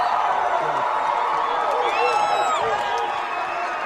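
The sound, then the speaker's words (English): A crowd in the state of Georgia roars and cheers steadily for Ric Flair, the Nature Boy, throughout, with scattered whoops and shouted voices rising above the dense, loud wash of noise. “Well, Jim Ross, I got to tell you from the bottom of my heart, this is the first time I ever came in the state of Georgia and heard someone cheer for Ric Flair.”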